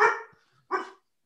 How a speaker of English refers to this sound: She finally crashed a podcast. She broke into my house. And that's how she's getting on the podcast, by barking into the microphone.